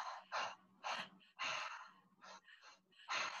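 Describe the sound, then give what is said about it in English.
Loud, rhythmic open-mouth breaths: quick deep inhales into the belly and chest and forceful exhales in a repeating pattern, with no talking. “And we, it's all done through the open mouth. So it's breathing deep into the belly, breathing deep into the heart, and then exhaling.”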